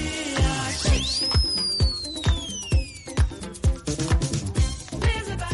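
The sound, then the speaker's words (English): A bright whistle from an 80s party pop song swoops up and then slowly slides down over the upbeat track with punchy, steady drums. The music carries on after the whistle fades, with no talking. “It's an 80s stupid pop thing. That they have at all parties, and they have that whistle.”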